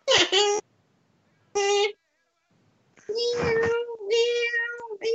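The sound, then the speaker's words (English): A cat meows loudly: two short, sharp meows with a pause between, then a longer, drawn-out wailing meow that runs on for about two seconds. “The fucking cast woke me up at 6 o'clock this morning to feed him.”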